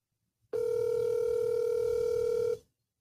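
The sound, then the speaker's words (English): A steady electronic phone tone sounds for about two seconds at even volume, like a call ringing out, starting and stopping abruptly with no voices. “I'm just trying him again here. I don't know. Maybe his phone's not dead because it would go right to voicemail if that was the case.”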